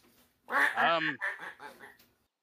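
A duck quacks several times in quick succession, a loud, nasal, raspy burst followed by shorter chattering calls, with no other sounds around it.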